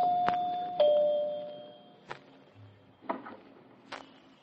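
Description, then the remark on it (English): A doorbell at a house sounds a clear two-note ding-dong chime whose tones ring on briefly, followed by a few sharp, separate knocks or clacks. No one speaks. “Now, where's that doorbell?”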